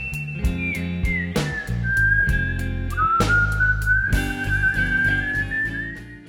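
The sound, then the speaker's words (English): Bonnie, an orangutan at the zoo in Washington, D.C., who has learned to whistle, whistles a long, steady note that dips, then slowly rises over several seconds, with rhythmic music with percussive beats playing underneath. “That was said by Al Setka of the Great Ape Trust about Bonnie, an orangutan in the zoo in Washington, D.C., who has learned to whistle to pass the time.”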